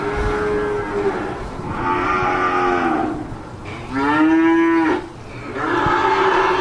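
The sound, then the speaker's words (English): Several cattle, cows and calves waiting to be sold, moo one after another in auction holding pens, long loud lowing calls overlapping with a busy herd murmur between them, no talking. “Lots of cows in here. A lot of cows.”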